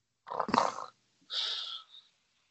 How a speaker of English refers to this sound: I can't believe you're the second person to snore on this podcast after Carl.